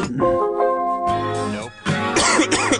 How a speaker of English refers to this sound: Jesus Christ, this cough of mine. It's hardly noticeable. Yeah, only when you cough.